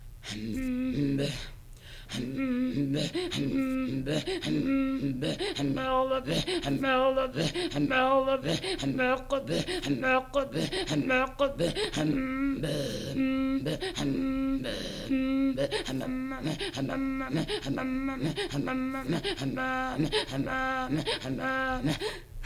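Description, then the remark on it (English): Inuit throat singing in Kangirsuk: rapid, rhythmic pulses of guttural and breathy voiced sounds repeat in a steady, driving pattern, loud throughout, with no ordinary speech. “Throat Singing In Kangirsuk”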